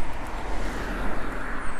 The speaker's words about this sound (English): And a lot of car ambiance this morning. It's about 6 o'clock, so people are starting to head into work.